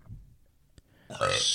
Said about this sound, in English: Okay. Lots of burping going on. Tastes like the Mexican food we had, bro. We did have Mexican food tonight.